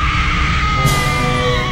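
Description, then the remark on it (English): A woman screams loudly in one long, continuous, high-pitched wail that holds steady for nearly two seconds, intense, with no talking. “So that leads us to this week's woman screaming.”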